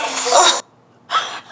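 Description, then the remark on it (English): A sharp, breathy gasp of shock, heard as two airy bursts separated by a brief silence, the second one cut off abruptly. No talking. “As you can see, a cut-off gasp at the end, because I was shocked.”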